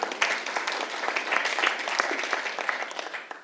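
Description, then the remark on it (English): An audience claps together in a steady, dense patter of many hands, moderately loud and sustained for the whole stretch with no voices over it. “I think we should give God a clap for that.”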